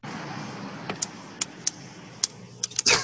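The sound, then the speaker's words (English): Switches being flipped inside a truck cab by someone trying to start the truck: a string of sharp plastic clicks at an uneven pace, bunching together near the end, over a low, steady interior rumble. “It's when he's flipping the switches inside the cab of the truck.”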